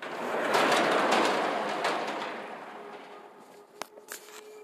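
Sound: door opening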